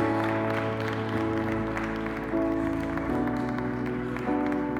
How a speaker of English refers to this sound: Come on, let's give God another hand clap of praise.